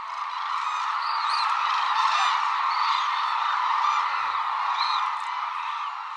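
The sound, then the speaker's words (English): A dense, continuous chorus of many hooded cranes calling together around sunset at a wintering reserve on Kyushu, Japan, with overlapping bugling and trumpeting notes forming a steady wash of sound and a few sharper calls standing out. “Most of the world's hooded cranes winter at one reserve on Japan's southern island of Kyushu, calling together around sunset.”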